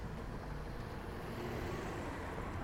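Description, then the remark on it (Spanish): A heavy armored truck carrying money rumbles past, its low engine drone steady and continuous with broad road noise, and no one speaking. “¿qué pasan estos camionzotes que cargan dinero? Sus camiones blindados, cargados de varo.”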